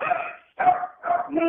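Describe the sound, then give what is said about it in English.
A dog barks three times in quick succession, each bark a drawn-out, slightly whiny yelp with a clear mid-pitched tone and brief pauses between them. “The dog likes the car, doctor.”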